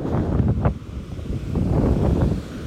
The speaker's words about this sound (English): So we have waves crashing in the background. It is the last full day of being at the beach.